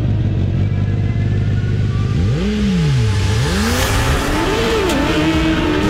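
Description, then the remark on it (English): The engine of a racing lawnmower that can reach 100 miles an hour in 6 seconds screams at high speed, its pitch sweeping up and down in repeated revving surges over a steady, loud mechanical roar, with no voices. “And some people might ask, well, what does a 100 mile an hour lawnmower sound like?”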